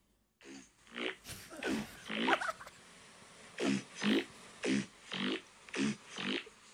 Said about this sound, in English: That's impressive. No, I think my older sister can finally fart too.